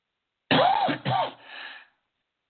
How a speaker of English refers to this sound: Excuse me. It's medication that causes me to cough. It's nothing more than that.